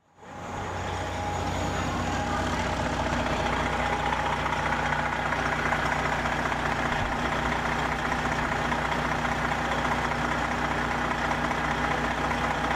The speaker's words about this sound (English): Idling buses.